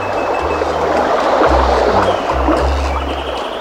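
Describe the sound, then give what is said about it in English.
Broad, steady rush of the Congo River's water with a boat's low rumbling drone underneath, shifting in pitch as the craft pushes off from the shore and moves off heading north; loud, no voices. “Pushing off from the shore, we headed north.”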